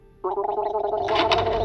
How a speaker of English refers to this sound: What the hell? You spit on my arm.